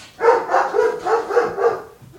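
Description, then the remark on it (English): A dog barks rapidly and repeatedly, about six sharp barks in quick, steady succession, fairly loud with no talking over them. “How old is Bruno in dog years?”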